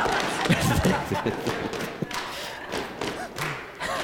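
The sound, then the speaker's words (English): A group in a crowd stomps their feet on the knee slaps of a group rhythm exercise, in a loose, uneven rhythm, heavy low thuds overlapping one another, with voices and shouts mixed in throughout. “Let me hear them stomps. Like you're stomping the devil.”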